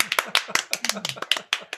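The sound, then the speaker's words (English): Hand clapping, a slow clap of about a dozen sharp claps in a steady, fairly quick rhythm, with a faint voice murmuring underneath. “And slow clap.”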